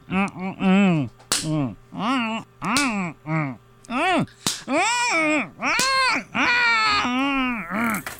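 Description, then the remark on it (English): About half a dozen sharp, loud slaps to a person's face land at uneven intervals, given as a standard part of a dental visit, each mixed with high, wavering yelps and pained cries from a voice between the hits. “Okay, now I'm going to do another standard part of the dental experience, and I'm going to slap you in the face repeatedly.”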